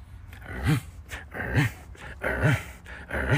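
A security dog barks four times in a steady, evenly spaced rhythm at someone sitting behind a wall, each bark deep, gruff and fairly loud, with no one talking.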